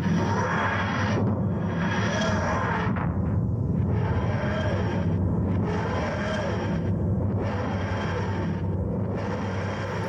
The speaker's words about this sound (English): Hey, will someone else please tell me you hear that noise? You mean that wheezing sound, like house keys being dragged on broken piano strings? That's oddly specific.